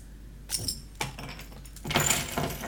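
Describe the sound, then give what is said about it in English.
Keys jangle and clink against a glass bottle of 11% top-fermented beer, a few short metallic rattles followed by a longer, busier jingle near the end, with no one talking. “That's us putting our keys up and down for the bottle here, folks.”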